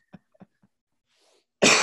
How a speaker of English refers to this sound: You know what's fucking crazy is I never cough on stage. You know what I'm saying? The only thing I cough on is this podcast, because they go long.